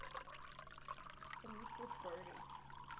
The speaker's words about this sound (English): Oh, you got it all over the carpet. Oh, my God. Oh, my God. Pee everywhere. Oh, no. You have terrible aim.